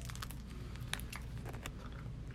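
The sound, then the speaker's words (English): Wet chewing on a sticky cherry treat during a tasting, with scattered small crunches and smacking clicks over a low steady hum; no one speaks. “Put it to the back of your mouth. No, just chew it.”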